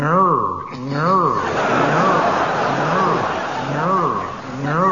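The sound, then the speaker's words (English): A voice imitates Kenneth Williams' car alarm with repeated rising and falling whoops, a nasal siren-like wail cycling about five times, loud, over a steady noisy background. “Well, it may surprise you to hear, I've been doing this for quite some time, and I have collected Kenneth Williams' car alarm.”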